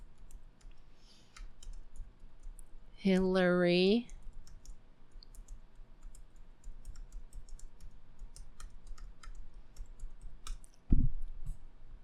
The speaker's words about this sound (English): Let's look that up right now. I'm typing here.